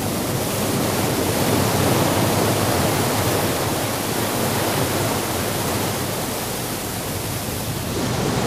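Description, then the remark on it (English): Loud, steady rushing water in which two people struggle to swim fills the whole stretch with a dense, unbroken roar, constant, with no voices or distinct splashes standing out. “I thought I could swim. Yeah. It's not like the water in the reservoir.”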